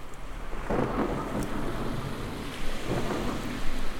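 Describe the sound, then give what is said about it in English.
A thunderstorm with steady rain hissing throughout and deep, rolling thunder rumbling in the background, swelling and fading over a few seconds. No voices. “You look up at the sky and see lightning dancing in the clouds.”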